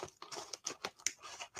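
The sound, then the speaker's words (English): Quick crinkly snips and rustling as scissors slice through a crackling plastic bag of buffalo blue cheese flavored snacks, several short bursts with no talking. “I got scissors here. I better take scissors.”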